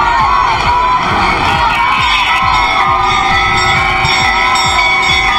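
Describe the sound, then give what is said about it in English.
A large crowd cheers and shouts continuously as a coffin leaves a church in Moscow after a funeral, a dense, loud roar of many voices that holds steady throughout with no pauses. “There was a cheering from crowds as Alexei Navalny's coffin left the church in Moscow following his funeral.”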